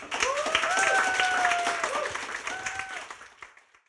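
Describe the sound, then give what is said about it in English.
An audience applauds in a dense, steady wash of clapping that gradually fades out, with a few whoops and cheers rising over the noise, a round of applause for author Jonathan Miller. “So, if I can have a round of applause, please, for Jonathan Miller.”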